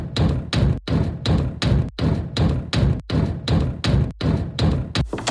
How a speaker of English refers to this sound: Bro. Calm down. Why are you banging off the door like that?